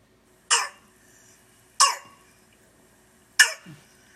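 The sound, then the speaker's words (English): Three harsh, barking croup (laryngotracheitis) coughs, each a sharp burst with a seal-like bark quality, spaced evenly over a few seconds with quiet breathing between, fairly loud. “The clinical presentation here is a barky, seal-like cough that is usually worse at night and may cause severe respiratory distress.”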